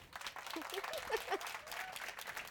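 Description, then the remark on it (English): Steady audience applause for a guest at a Meet the iPhone Photographer event at the Apple Store, Regent Street, London: a dense wash of many hands clapping at a moderate level, with a few faint voices and whoops rising briefly above the clatter. “Please give a good round of applause for my guest”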